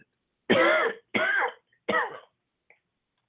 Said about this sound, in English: I'm getting ready to cough. Excuse me.